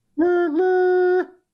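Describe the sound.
A person imitates a train whistle with their voice, a single sustained hooting tone of about a second that dips slightly, then holds steady at a higher pitch before cutting off.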